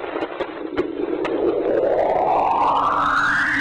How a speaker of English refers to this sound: And then followed by what are called the screams of Enceladus.